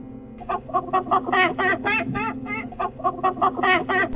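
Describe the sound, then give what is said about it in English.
Chickens on a farm cluck in a rapid, steady stream of short, nasal calls, several birds overlapping with a low murmur of the flock underneath and no voices. “Often he would chat with the chickens and geese and other animals who lived there.”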